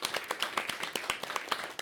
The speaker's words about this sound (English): I think that's round of applause worthy, that one.